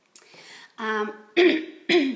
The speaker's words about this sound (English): clearing my throat.